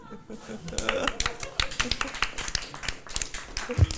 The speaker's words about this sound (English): You know, my favorite part about wearing these shorts is I don't actually have to applaud with my hands. I have my whole thigh. You slap those. Good point. Slap those thighs.